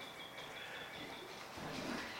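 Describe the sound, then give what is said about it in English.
Faint birdsong outdoors: thin, high chirps repeating in a steady stream over a soft, constant wash of background noise, with no one speaking. “Those birds are loving this.”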